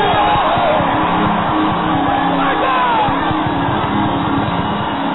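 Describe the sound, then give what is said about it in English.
A large audience at a conference shouts, whoops and screams together in a loud, continuous roar of overlapping voices, with rising and falling yells cutting through the dense crowd noise for the whole stretch. “Is somebody shouting here tonight?”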